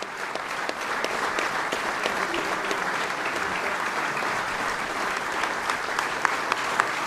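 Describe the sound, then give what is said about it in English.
Sustained applause at a ceremony from a large audience, including President Trump, applauding David Bellavere. Steady dense clapping fills the space for several seconds without a break, loud, with no voices standing out. “President Trump among those applauding David Bellavere.”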